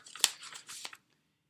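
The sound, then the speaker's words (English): A crisp rip of paper as an envelope is torn open, about a second of scratchy tearing with a couple of sharper bursts, then silence. “Okay, let's have a look at the spurious envelope.”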